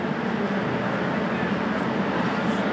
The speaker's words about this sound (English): Stood outside Charing Cross station, train station, with three extension leads and a copy of the Evening Standard and a heavy bag at the end of quite possibly my busiest day and, in some respects, my most stressful day at the BBC.